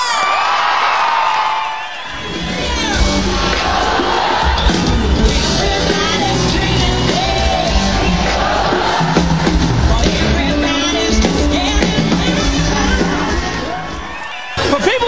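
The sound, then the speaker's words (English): A huge stadium crowd at a CMA concert roars with cheering, whoops and screams for a performer, a dense, loud wall of noise that swells after a brief lull and carries on steadily, with individual yells poking through. “Please make tons of noise, scream as loud as you can”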